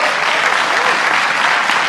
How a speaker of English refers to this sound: Because we're just going to listen to some clapping.